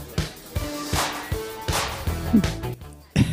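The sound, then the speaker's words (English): A series of sharp whip cracks played from the Big Bang Theory Whip phone app, each a quick swish snapping into a loud crack, repeating roughly every half second over a faint humming musical background. “I've got the Big Bang Theory Whip app.”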